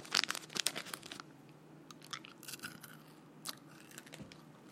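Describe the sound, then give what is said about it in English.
Crinkly plastic rustling and crackling as a bag of M&M candies is torn open, with bursts of sharp crisp noise in the first second and scattered crackles after, no talking. “Sorry, I'm sneaking, opening up some M&Ms here in the corner.”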